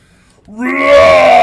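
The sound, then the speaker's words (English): A human voice bellows the incantation of a Minotaur battle cry: after a brief hush, a loud, rich, harmonic roar swells upward in pitch and holds, sustained and strained, to the end. “I'm going to bellow out the incantation of the Minotaur battle cry that will give my companions within 15 feet of me advantage on their next attack.”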